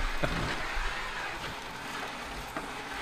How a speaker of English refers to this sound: And yeah, we can hear it. I just love what anybody's thinking who just tuned the station. Right. Yeah. We're going to go to break. The background music of the vacuum cleaner playing.